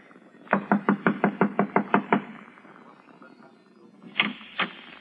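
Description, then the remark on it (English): A quick, even series of about nine sharp knocks on a door, then a pause and two more knocks. Fairly loud, with no voices. “I'll knock on the door and try it again.”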